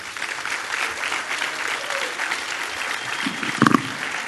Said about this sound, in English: Amen. Thank you. Oh, give him a hand. Thank you.